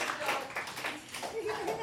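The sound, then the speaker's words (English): A comedy show audience from around the Bay Area claps for itself for the full two seconds, a dense crackling wash of many hands with excited voices and whoops rising over it. “Give it up for yourselves coming out here.”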